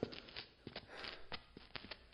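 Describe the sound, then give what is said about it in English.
Soft, steady footsteps, roughly eight or nine muffled thuds in an uneven walking rhythm, fairly quiet, with no voices over them. “I swear, I hear footsteps. And they aren't ours.”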